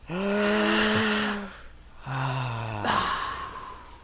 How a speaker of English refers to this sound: We're almost done, guys. Everyone take a deep breath right now.